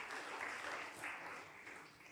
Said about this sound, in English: Yes, round of applause. Wow.